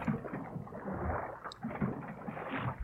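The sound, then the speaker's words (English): Water sounds from Donkey Kong Country 2 video game music: a continuous, dense rush of sloshing, churning water that swells slightly and resembles heavy rain, with faint low tones underneath and no voices. “So hear the water. It almost sounds like a thunderstorm.”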